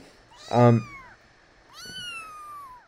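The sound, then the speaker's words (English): A small female cat meows twice, first a loud, short mew, then a longer, thinner meow that trails downward, with quiet background noise between. “I'm dealing with a cat at the moment. She's really tiny.”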